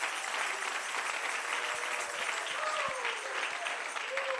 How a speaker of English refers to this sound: Hey, give me that real thing. Come on, clap your hands.